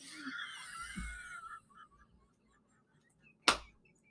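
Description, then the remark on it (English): A single loud, sharp slap of hands on thighs rings out after a few seconds of faint rustling and muffled low thumps, then quickly fades to near silence. “I just slapped my own thighs.”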